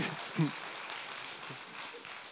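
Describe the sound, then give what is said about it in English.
An audience claps in a steady, dense patter of many hands that keeps going for a couple of seconds, with a few brief bits of voice rising over it. “I'm like, you don't have to clap.”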